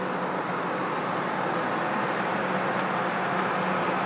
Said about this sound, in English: Yeah, it's the bus.